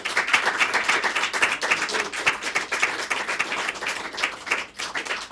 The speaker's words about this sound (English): Give him a round of applause, everyone, please.